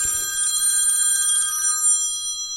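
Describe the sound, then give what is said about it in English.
A telephone rings with a bright, sustained metallic bell tone, loud, heard alone with a brief low rumble at the start and no talking. “Getting a phone call from Santa Claus himself”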